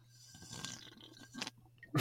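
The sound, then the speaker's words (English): Wet slurping of beer, a few short noisy sips building to a louder gulp at the end, with no one talking. “No, I was sipping a beer very loudly.”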